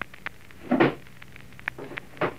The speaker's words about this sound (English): was that you slamming the door?